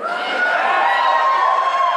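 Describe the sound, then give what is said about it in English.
Italian audience members shouting out on request, a crowd of voices all at once, a loud, steady burst of overlapping calls and cheers lasting a couple of seconds with no single voice standing out. “If you're Italian, just shout at me.”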